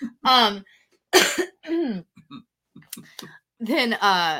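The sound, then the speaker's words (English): A few harsh coughs from people getting over being sick, with short bursts separated by brief pauses and mixed with throaty voiced sounds and quiet clicks. “Also, sorry, we were both getting over being sick. We're like nasty coughing.”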